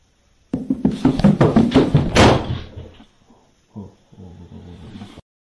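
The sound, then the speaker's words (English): A loud flurry of knocks and bangs on a door lasting a couple of seconds, followed by a pause and a few softer thumps and rattles. No voices are heard. “Watching it again, there was the initial knock and he looked down, like you said, to make sure he didn't knock something over, just to see what was going on down there.”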